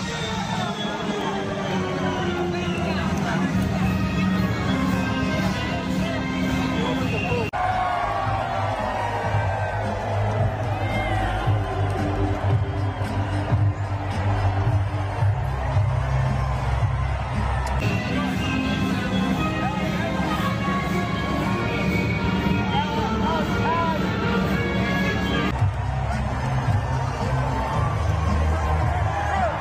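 Crowd cheering at a Joe Biden event, compared with a Donald Trump rally crowd, in a dense, sustained roar of shouts and whoops, loud throughout, with abrupt cuts where one segment of crowd noise switches to another.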